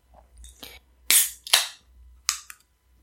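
A can of soda being opened: faint rustling, then a loud sharp crack with a hiss, a second fizzing burst, and a shorter high hiss with a click at the end. No one speaks.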